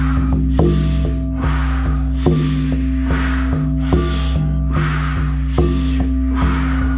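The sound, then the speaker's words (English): A steady series of deep, forceful breathing-exercise breaths, about six or seven in a quick even rhythm, each a rushing airy whoosh, over a continuous low musical drone. “Try to go deeper in these last 10. Yes, that's it. Good. Whole body is breathing.”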